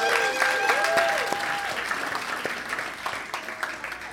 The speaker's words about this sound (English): Good morning. Happy Mother's Day. Come on, let's give the mamas a round of applause.